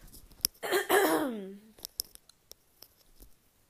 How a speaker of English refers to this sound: So I'm going to actually try to cough a little. Excuse me.